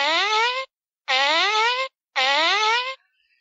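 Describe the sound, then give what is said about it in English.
Three loud, drawn-out fart noises, each about two-thirds of a second, with brief silences between them and a buzzy, brassy tone that rises slightly in pitch. “7 farts.”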